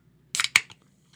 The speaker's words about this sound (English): You got like today was a good day for can openings. The reason mine's not too bad because it's a little warm. You got some distance on that pop too. The liquid popped out.